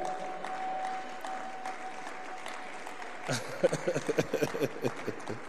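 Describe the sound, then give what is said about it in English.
A low crowd murmur with a faint steady hum gives way to an audience breaking into clapping, a quick run of sharp, fairly rhythmic claps that stand out over the background. “You cannot clap.”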